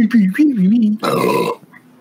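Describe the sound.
A loud, rough, raspy belch erupts for about half a second, right after a brief stretch of wavering voice, then quickly fades to quiet.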